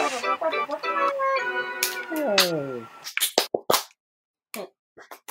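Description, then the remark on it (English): A voice sings a short melody that slides downward, then sharp hand claps follow in a quick rhythmic burst, a brief pause, and a few more claps, loud and crisp, in the pattern of the Friends clap. “Friends clap. We've been obsessed with the Friends clap for some reason.”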